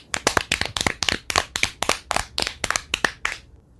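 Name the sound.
clapping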